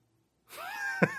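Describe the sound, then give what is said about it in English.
A person vocally imitates a lightsaber and lightning-flashlight sound: a breathy, sustained buzzing hum that swells and slides upward in pitch, broken near the end by a short sharp burst, with no words spoken. “This is my lightsaber / lightning flashlight sound.”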